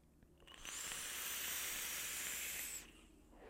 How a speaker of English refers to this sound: That whistles too. It's the RDA for vaping V2. Yeah, I was gonna say, yeah, that whistles as much as the P22.